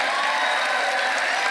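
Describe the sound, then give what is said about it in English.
An audience claps steadily and densely to show they believe there is intelligent life in space, a continuous wash of applause with a few cheers and whoops mixed in, loud and sustained throughout with no pauses. “First off, how many of you people out there think there is life in space? Not the kind of pond scum you may find at home, but intelligent life. By applause.”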